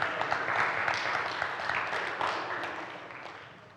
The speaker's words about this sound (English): Everybody give her an awkward round of applause.